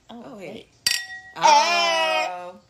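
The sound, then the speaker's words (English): A single bright clink of wine glasses of red cabernet sauvignon touching in a toast, ringing briefly, with a voice just before and an excited exclamation right after. “So y'all, we're sipping on some cab. Don't ask me the name, I don't know. It's red. Sauvignon. It's red and delicious. Yes. Cheers, y'all.”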